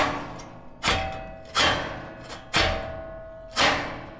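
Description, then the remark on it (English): Paper being shredded: four rough, crunching bursts, each tapering off over about half a second, spaced roughly a second apart over a steady low motor hum, with no talking. “Because the sound is paper being shredded, and he guessed paper shredder”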